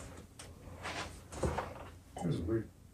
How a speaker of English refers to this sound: Just heard a weird sound. Yeah, that was my kid coughing.